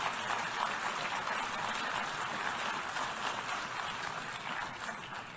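Sustained applause from a large crowd in the General Assembly for the Prime Minister of Israel, a dense, steady wash of clapping that holds at an even loudness for several seconds with no voices heard over it.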